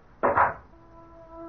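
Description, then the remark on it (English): A heavy, very high, dark wooden door thuds shut in a single heavy, dull impact that dies away within half a second, leaving a faint, steady ringing hum behind it. No voices. “The door thudded shut like a cell door behind me.”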